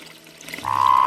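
A Sonoran desert toad urinating into a little creek: faint watery noise, then a strong, steady stream kicks in partway through, holding an even, slightly tonal pitch and loudness until the end.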